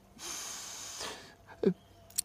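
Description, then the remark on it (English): A long, drawn-in sniff with a breathy hiss, then a short snort and a faint quick click, with no talking. “Sniff this.”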